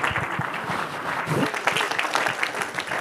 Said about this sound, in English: Let's clap our hands and thank God. Hallelujah.